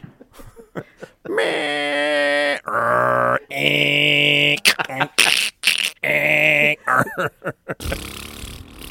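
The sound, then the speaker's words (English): Someone makes a run of loud mouth fart noises: several buzzy, drawn-out blasts with short gaps, broken up by quicker spluttering bursts toward the end. “Are you just going to make fart noises now?”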